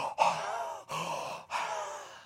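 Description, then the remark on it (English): A voice imitates the deep, exhausted breathing of athletes who gave it their all: three long, heavy breaths in a row, each a loud, airy rush, separated by brief pauses, with no talking. “Deep breathing. They gave it their all. They're exhausted.”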